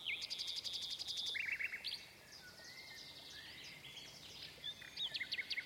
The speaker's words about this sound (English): The nightingale started to sing. "There she is," said the girl. "She's sitting up there," she added, pointing to a little grey bird who was perched on a branch.